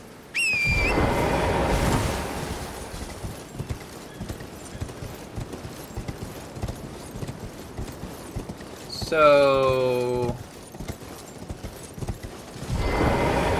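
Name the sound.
horse hooves clip-clopping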